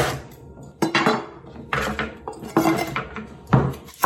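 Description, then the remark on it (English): A knife cuts a pumpkin in half for roast pumpkin, with a series of sharp, crunchy chops and knocks against a board, five or so irregular strikes with quieter scraping between them and no talking. “I think I might cut them in half because they're quite big.”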